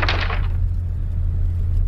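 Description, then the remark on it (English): A short, bright rattle and clack of a bathroom door lock being turned to unlock it, lasting about half a second, followed by a steady low hum with no voices. “I'm just unlocking the bathroom door.”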